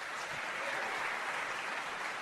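Steady audience applause as a KSL show cast member, Chris Sullivan, is introduced, a dense wash of many hands clapping at an even, sustained level throughout, with no voices rising above it.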